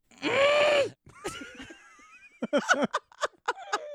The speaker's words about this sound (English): I like this one. I'm really proud of this one. This is my screaming flames.